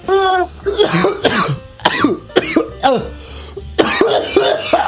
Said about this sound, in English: Hey, sounds like you're coughing again.